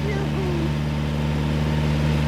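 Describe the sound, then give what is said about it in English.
A vintage Nazzaro car, like the 1913 Targa winner, drives with its engine droning steadily, a deep, even hum with a low throbbing note that holds for the whole stretch, with a faint voice briefly over it near the start. “What a great old car. We journeyed on in a Nazzaro just like the Targa winner of 1913.”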